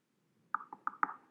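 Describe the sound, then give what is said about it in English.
Four quick knocks on a hard wooden desk, evenly spaced in a short rhythmic burst, soft, with no voices around them. “I would go and knock on her desk, and she'd get very upset”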